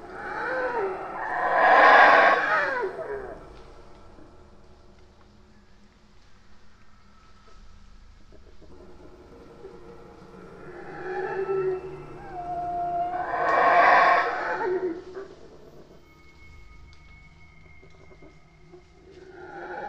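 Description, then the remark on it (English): Howler monkey calls: two long, loud, throaty roaring bouts, each rising and swelling for a few seconds, separated by quieter stretches of lower grumbling and faint hoots. “Check out what a howler monkey sounds like, and think about if you didn't know howler monkeys existed and you heard this.”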